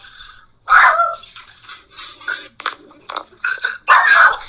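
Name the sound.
dog barking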